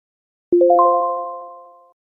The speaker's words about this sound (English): In the following short sequence, I will begin. There will then be a beep and a short pause for you to respond with an appropriate response.